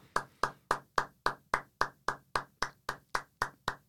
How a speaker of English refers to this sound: Yes, claps. Claps all around for them.